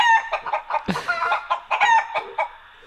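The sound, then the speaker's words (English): A chicken clucks in a quick, uneven series of short, nasal calls, with a brief scuffling thump partway through and no one talking. “It's a chicken named Fred.”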